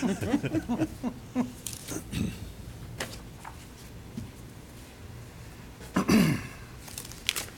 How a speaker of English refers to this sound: I want to make sure I sign this paper.